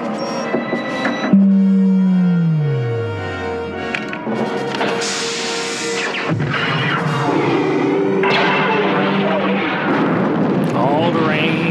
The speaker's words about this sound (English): All right. Episode 4, the original Death Star explosion, Alderaan. Commence primary ignition.